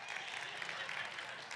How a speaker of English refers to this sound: Yeah, give her a clap. Come on now.